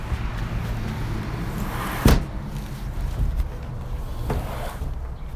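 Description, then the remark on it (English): Two windows are shut one after the other, a sharp thud followed later by a softer knock, over a steady low rumbling background with no talking. “Can you close those two windows behind you?”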